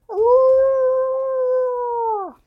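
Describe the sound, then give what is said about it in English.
A single long, steady animal howl comes in from the woods. It holds one pitch for about two seconds, then drops away at the end. It sounds clear, with no talking over it. “And as Varuk kind of lets out a chuckle, you hear in from the woods a howl.”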